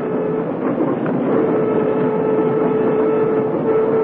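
A commuter train rolls steadily along the tracks, a continuous loud rumble with a faint metallic whine running through it, with no voices.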